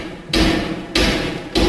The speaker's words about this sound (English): next door's renovation work, complete with the clatter of workmen and the din of machinery.